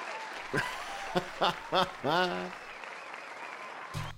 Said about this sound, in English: All right, so I put some applause there in the show. But I'll applaud myself. I'm doing a good job. Got you a walkout. Right? I got you a walkout applause. I thought you were worthy of some walkout applause there, man.